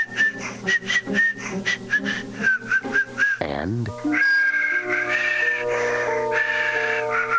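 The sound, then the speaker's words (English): A thin, wavering, high-pitched whistle from a man's nostril as he breathes, repeating in short breathy bursts and then sustained, with a brief voice and a swooping warble partway through. “his whistling nostril will soothe your psyche and comfort your soul with the naturally organic rhythms”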